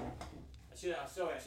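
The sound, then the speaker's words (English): A wooden drawer slides open with two short, squeaky scraping pushes over a low background rumble, as someone looks in the drawer for a bottle. “Well, if everyone listens to sound effects, that's a drawer opening.”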